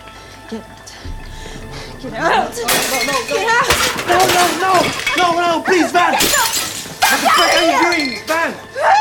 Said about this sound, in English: Smashing plates and throwing, and she's screaming, and just how that all escalates is so important to following the arc